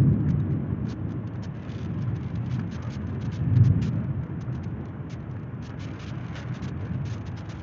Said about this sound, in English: You know we get floods out here in the valleys. Smoke a Blunt Podcast, we get floods in the valleys. You know what I mean? We alright though. It'll stop raining, hopefully.